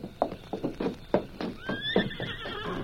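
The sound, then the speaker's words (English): A horse whinnies with a high, quavering call while hooves clip-clop in a steady, uneven rhythm beneath it, fairly loud with no one speaking; the horses are waiting with a stagecoach that is ready to go. “The stage is all ready and the horses are waiting.”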